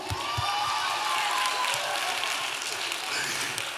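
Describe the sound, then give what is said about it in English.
An audience claps loudly and steadily for several seconds in thanks to the church's volunteer teams, a dense wash of applause with a few voices cheering faintly underneath. “I make you clap today for all the years.”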